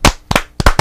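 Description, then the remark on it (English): A quick burst of about five loud, sharp hand claps in an uneven rhythm, each one a crisp smack, with no talking over them. “Yeah, clap that up.”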